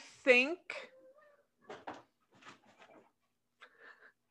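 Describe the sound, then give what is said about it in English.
A cat meows loudly near the start, a short rising-and-falling cry, followed by a second briefer mew, then quieter voices talking in the background. “Your cat must really think that John O'Hurley is the way to go.”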